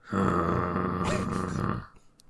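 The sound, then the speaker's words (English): A person imitates a snore with a single long, rough, rattling inhale lasting under two seconds, then trailing off into quiet. “I'm going to do the snore, and I don't know if it's going to come through.”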